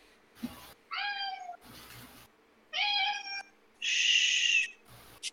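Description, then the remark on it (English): A male cat meows loudly several times, a couple of drawn-out harmonic meows followed by a harsher, raspier yowl, separated by brief rustling or bumping noises. “Kitty cat. Can you hear him?”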